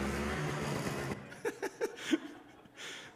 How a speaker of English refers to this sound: There's me learning how to use a snowblower. See how I'm struggling to aim it? It's just all getting on my son's car.